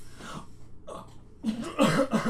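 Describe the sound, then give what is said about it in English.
A person coughs several times, a few scattered hacks followed by a louder cluster of rough coughs near the end, with no talking. “I cough instead of saying something.”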